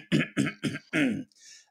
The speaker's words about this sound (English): Okay, let me clear my throat.